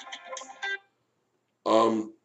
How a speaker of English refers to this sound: My phone is beginning to ring, and I will need to go in a few minutes.